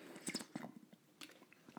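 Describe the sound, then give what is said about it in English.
Quiet sounds of someone drinking water: wet mouth clicks and a few soft gulps and swallows in an irregular rhythm, with a slightly louder swallow at the end and no talking. “Well, let me drink some water for this one.”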